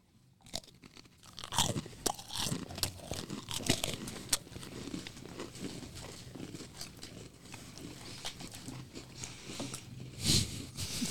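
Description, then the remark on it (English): Crunching of crisp rose-flavored Oreo cookies being bitten and chewed, with sharp irregular crackles that start loud, settle into steady chewing, and burst again near the end. No talking. “So we have rose flavored Oreos. You start it. And as soon as you crunch, I'll crunch.”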